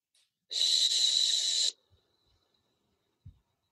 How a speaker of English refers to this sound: And then very slowly, I want you to breathe out for 12.